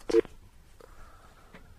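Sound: telephone keypad dialing tones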